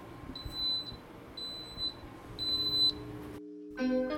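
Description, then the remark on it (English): An Instant Pot beeps three times after its lid is closed and sealed, high and evenly spaced, each tone about half a second long. A short silence follows, then a brief burst of tonal, musical sound. “Oh, you gotta make sure it's closed totally. And it's sealed, boop, and then done.”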